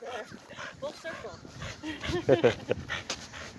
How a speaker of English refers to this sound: The dog walker is walking the dog. That's the puppy who lives down the street. I've never seen that dog walker. I hope she's not stealing the dog and walking it. That dog's a puppy. Well, now it's like a year old.